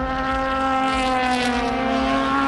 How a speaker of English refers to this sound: So, from listening to the sound of the cars, the new Aston Martins really do sing and rasp beautifully, adding to the chorus of sounds we get from